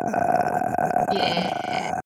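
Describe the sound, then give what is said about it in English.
A loud, drawn-out belch-like noise rumbles for about two seconds, rough and throaty with a steady buzzing tone, heard on its own without any talking. “That did sound like a belch. I really thought you just belched.”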